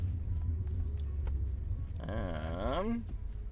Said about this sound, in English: In the car, we're just clearing past Golden on our way to Kelowna. I'm riding in the back seat with a bunch of chips and luggage sitting to my left.